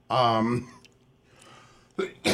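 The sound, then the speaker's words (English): A man makes a voiced, throaty sound, then after a quiet pause lets out two quick, harsh coughs. “He's got a cough.”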